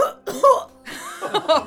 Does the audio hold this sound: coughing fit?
yes